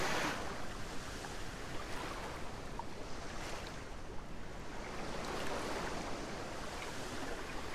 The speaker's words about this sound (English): And we notice that where the waves have peaked and paused before they flow back out into the sea, that they've left behind a trail, a wonderful pattern on the beach.